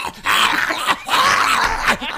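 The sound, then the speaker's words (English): A person imitates the growl of an angry dog being picked up: loud, raspy, snarling bursts in quick succession with brief breaks between them, with no other talking. “Imagine picking up a beer keg, and then the beer keg goes.”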